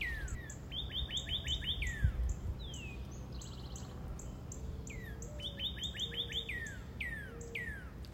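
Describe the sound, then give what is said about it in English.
Birds chirp in quick repeated bursts of high, sweeping notes, with a second series following a few seconds later over a steady low outdoor rumble, heard from a kayak on the water. No one speaks. “Bird time. It is a privilege to be with the wild things, watching them gathering food, ignoring me, sitting silently in my kayak.”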